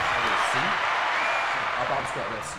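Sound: applause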